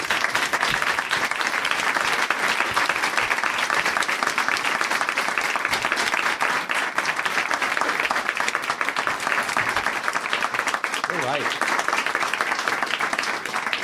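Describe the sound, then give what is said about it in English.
Sustained applause from a sizable audience welcoming Kurt Sutter, dense and steady for the whole stretch, with no voices rising above the clapping. “Please give a big round of applause to Kurt Sutter.”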